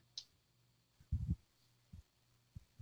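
Soft, low thumps pulse at an uneven pace, starting with a stronger doubled beat and followed by a few lighter single beats, like a heartbeat.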